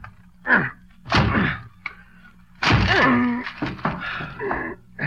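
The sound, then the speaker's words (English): Someone forces a door with a run of heavy, irregular thuds and bangs, followed by loud creaking and groaning wood as it gives way, then scattered clatter. “I'll break this door down for you.”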